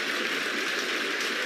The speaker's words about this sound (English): And it's a move which has been warmly applauded on all four sides of Meadow Park.